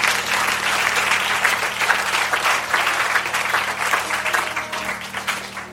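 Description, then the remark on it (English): An audience at a sermon gives itself a round of applause, clapping steadily for several seconds in a dense, loud wash of many hands that holds its level throughout with no voices standing out. “Maybe you need to give yourself a round of applause.”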